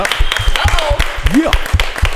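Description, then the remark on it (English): Applause in a steady, rhythmic beat, about four sharp claps per second, with a few gliding whistle-like tones rising and falling over it. Nobody speaks. “Clap it up.”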